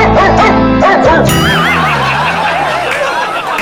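A dog kept at a store in Beijing to make customers laugh barks and yelps loudly in a continuous run of vocalizations, its pitch wavering up and down in warbling, almost laugh-like calls, with no speech.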